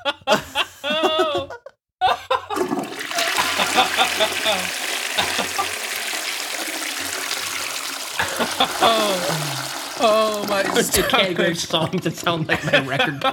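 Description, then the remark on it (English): A toilet flush roars out as a steady, hissing rush of water for several seconds, with people talking and laughing over it and before and after. “It's not even the worst thing on here, so it only gets a flush.”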